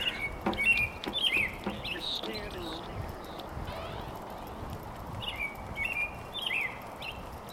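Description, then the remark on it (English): Robins singing outdoors, bright warbling phrases in two bursts, one near the start and another toward the end, over a steady hiss of background ambience with a faint pause between. “I think those are robins making that gorgeous sound.”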